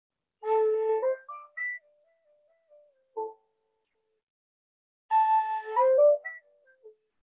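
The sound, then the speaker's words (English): Short, breathy flute notes play in two quick phrases separated by a pause, with a lone soft note between them and a gentle falling glide after the first run. No one speaks. “I have in my hand right now, I have a flute. I can play notes on the flute like this.”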